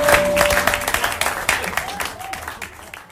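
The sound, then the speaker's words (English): An audience breaks into dense, steady applause for the dancers. Many hands clap at once at a fairly loud level, with a brief whistle-like tone early on, before the clapping gradually thins and fades. “We have some more applause for the dancers.”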